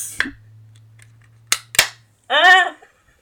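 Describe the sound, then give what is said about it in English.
A can of Truly Lemonade, about the size of an Arizona can, is opened for the mic with a short fizzy hiss, then two sharp, loud cracks of the tab over a low steady hum, followed by a brief voiced exclamation. “And I'm going to open it now for the mic.”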